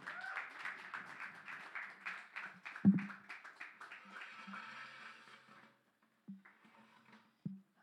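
An audience claps steadily as a dense, crackling wash of many hands for about five seconds, then the applause thins and fades out, leaving a few dull thumps.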